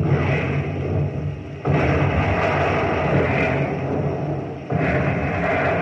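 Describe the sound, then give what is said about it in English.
Heavy naval guns fire in salvos at a stopped ship about 500 yards away, a dense, roaring rumble broken by two sudden booming surges of blast noise. No voices are heard. “Commence firing. Commence firing.”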